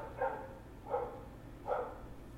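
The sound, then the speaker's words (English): A dog barks three times in a steady, evenly spaced rhythm, the barks somewhat muffled against a low background hum, with no one talking. “That fucking dog.”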